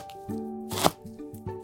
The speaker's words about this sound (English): Push the blade forward and down, using the blade's curve to guide the middle of the knife through the food. The tip of the blade should touch the cutting board at all times.